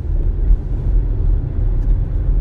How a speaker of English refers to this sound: It's bumper to bumper traffic, and he almost freaking rear ends me.